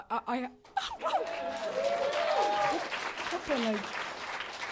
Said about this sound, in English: If you want another applause break, just show them your Slater Kenny t-shirts, which you are wearing. A lot of easier applause breaks with these.